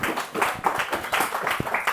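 An audience applauds, with many hands clapping in a dense, steady patter that stays fairly loud and even for the whole couple of seconds.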